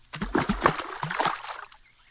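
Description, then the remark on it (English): Several quick splashes as ice cream sandwiches are thrown into pond water, a burst of slapping and sloshing that settles into a faint trickle within a couple of seconds. “I'm throwing in the ice cream sandwiches, boss.”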